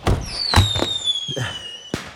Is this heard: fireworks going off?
yes